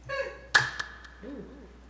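One sharp, loud hand clap, done as a sync marker before starting, rings out, followed by two much fainter ticks, with a soft tonal hum before it and a brief low murmur of voice afterward.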